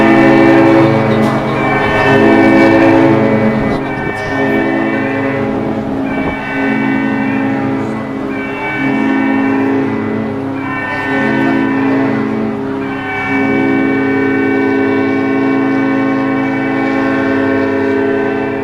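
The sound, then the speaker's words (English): A cruise ship emergency muster alarm sounding for passengers to go to their muster sections: loud, sustained, buzzy horn tones that swell and dip in a repeating pattern of blasts every couple of seconds, continuing steadily with no talking. “You go to that section, and this alarm will sound to let everybody know.”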